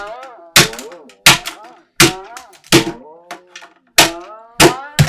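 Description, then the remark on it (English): A hammer strikes a robot called Mumbot seven or eight times in a steady rhythm, each blow a sharp, loud metallic whack, while a warbling, voice-like tone fills the gaps between hits. “I haven't tried hitting Mumbot with a hammer.”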